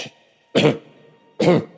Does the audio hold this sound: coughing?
yes